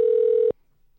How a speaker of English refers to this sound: Answer the freaking phone.